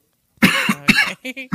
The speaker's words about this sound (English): Oh, see, there it is. Go that cough. I heard when you cough, that means you smoking that good stuff.